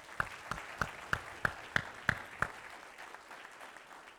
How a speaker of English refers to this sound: Give them a hand clap as they go.